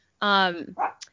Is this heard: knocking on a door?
no